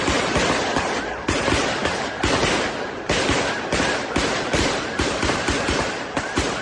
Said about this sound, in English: Another community enduring moments of sheer terror as more than a dozen deputies descend on the Cook's Corner bar, the sound of constant gunfire.